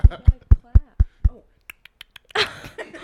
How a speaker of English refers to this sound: That was a horrible clap. Oh my god. I'm sorry.